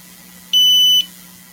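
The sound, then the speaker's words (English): A single sharp, high-pitched electronic beep from a carbon dioxide detector alarm, lasting about half a second, loud, over a faint steady low hum. “Carbon dioxide detector? That sounds like it does sound like a carbon dioxide detector.”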